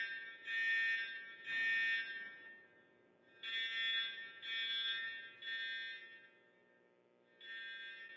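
A fire alarm blares in repeated shrill, high-pitched beeps, sounding in groups of three with short pauses between sets. No one speaks.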